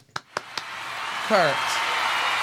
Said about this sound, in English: You couldn't have given us a different applause for the iHeartRadio.